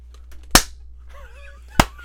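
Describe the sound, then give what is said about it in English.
Two sharp, loud hand claps about a second apart, each a crisp snap over a low steady hum, with faint wavering tonal sounds in the gap between them. “I don't hear you clapping.”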